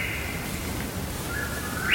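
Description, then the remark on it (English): A bird calls in the woods with long, sustained whistling notes that pause briefly, then resume and climb higher, over a steady outdoor hiss. “That bird would not shut up.”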